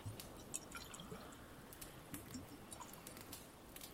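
Water drips steadily with irregular, bright little plinks over a soft, continuous wash of background noise; the drops are fairly quiet and no one speaks.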